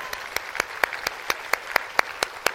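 Hands clapping in appreciation of the audience at a Wednesday night church gathering, in a steady, quick rhythm, about eleven sharp, crisp claps evenly spaced over a couple of seconds, with a faint background hum and no talking.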